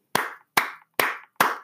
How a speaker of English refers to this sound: I'm just giving him a little round of applause.